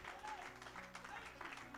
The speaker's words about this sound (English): Somebody clap your hands and give God great praise. Praise God.